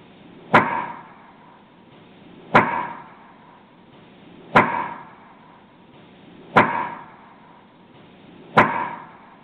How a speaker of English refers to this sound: But having said that, let's play Woodknock, labeled Woodknock Best Response, about 10 seconds here, and of course looped.